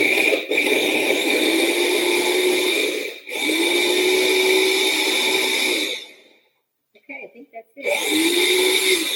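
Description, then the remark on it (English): An electric mini food chopper pulses wet ingredients for a chia bar in loud, steady whirring bursts with a high-pitched motor whine, pausing briefly between runs and falling silent once before starting up again. “That's what I love about this little mini chopper because it can do so many things and it's so easy to clean up.”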